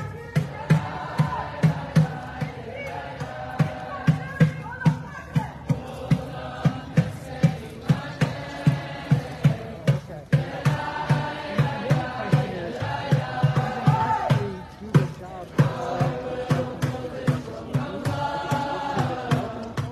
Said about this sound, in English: this crowd doesn't look like they're going to leave anytime soon. Now they have a war drum.